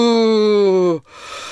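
A loud, drawn-out yawn: a sustained voiced tone that sags slightly in pitch for about a second, then trails off into a breathy exhale.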